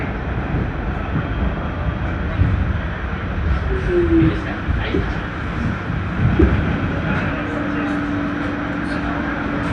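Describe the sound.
A Manhattan-bound C subway train running: a steady, loud rumble with rattling, and a sustained motor whine that settles in near the end. Muffled voices blur into the noise.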